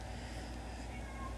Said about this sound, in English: My cat has a lot to say, guys.